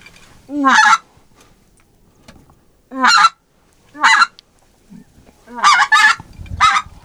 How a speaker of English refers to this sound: Man, these are some of the snobbiest geese around.